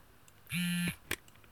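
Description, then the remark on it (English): A single steady electronic beep from an Orbit Writer Braille keyboard, lasting about a third of a second, a battery status check made by pressing space and up arrow, one long beep meaning fully charged, with a low hum underneath and bright harmonics above, followed by a brief soft click. “You had one long beep, so it's still fully charged.”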